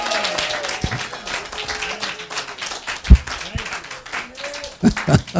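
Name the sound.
audience clapping hands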